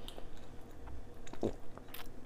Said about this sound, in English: As I take a sip, I think we'll go back because there's a bit of an echo in here